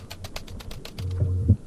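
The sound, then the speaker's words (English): Rapid, evenly spaced clicks of typing on a computer keyboard, about eight keystrokes in a second, then a low steady hum-like tone takes over. No one speaks. “I like how I've just got like hammering of the keyboard in the background.”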